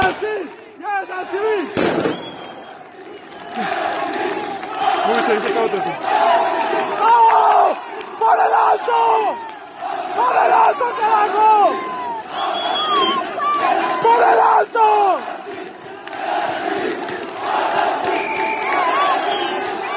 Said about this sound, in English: and so we'll play that audio of all those people coming to surround El Alto and what's the term? Blockade the city.